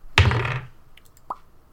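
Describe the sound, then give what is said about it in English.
A single heavy, booming knock on a door with a deep thud that rings out briefly, followed a moment later by a much softer, sharper tap. No voices. “Was a giant knock.”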